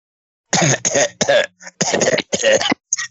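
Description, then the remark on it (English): A smoker lets out a run of harsh, raspy coughs in several bursts, mixed with gravelly throat clearing, loud with brief gaps between each hack. “Back there with the smoker's cough.”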